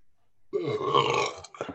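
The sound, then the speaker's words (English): A single loud, drawn-out burp rumbles for about a second, ending with a short gurgling tail. “You normally follow every big burp with, did you hear that?”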